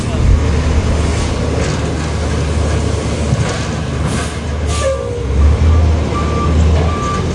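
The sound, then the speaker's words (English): A garbage truck idles with a deep, steady engine rumble as a series of evenly spaced reversing beeps sounds in the second half, with faint voices murmuring in the background. “And then to make matters worse, when they switch him out of the car, he's out behind a garbage truck.”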